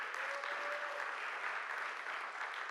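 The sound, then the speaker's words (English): A church audience applauds for the church moms and aunties in a steady, dense wash of clapping that holds at an even level throughout, with no voices standing out above it. “Clap it up for our church moms and aunties.”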